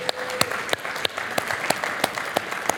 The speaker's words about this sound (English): West, can you give him a round of applause?